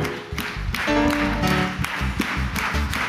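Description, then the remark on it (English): A crowd at a worship service claps together in a steady rhythm, loud, with a sustained musical tone swelling underneath partway through. “Clapping is the language of authority.”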